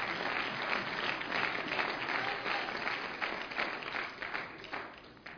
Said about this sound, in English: Let's clap our hands.